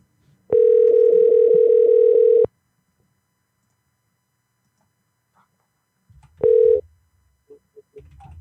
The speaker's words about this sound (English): I'm going to call your sister and get Bev on the phone. Let's see how that works out. All right, and then conference.